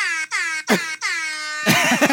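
Loud, brassy blasts from an air horn app in a quick stuttering series, three sustained honks followed by a burst of distorted, clipped horn sound, harsh with no talking.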